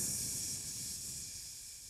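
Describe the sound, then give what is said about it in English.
A voice imitates the hiss of gas escaping from a fridge's Freon tank, punctured as the fridge landed while being moved up stairs: a steady, bright, breathy hiss held for about two seconds, slowly fading slightly, with no words. “We punctured the Freon tank, which is the whole thing.”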